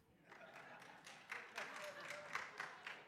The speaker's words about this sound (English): I did not expect clapping for King James.